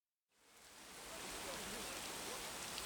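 Steady midday rain pours down on the Roman town of Camulodunum in a dense, continuous hiss, rising quickly from silence and holding at an even, fairly loud level with no voices or other sounds.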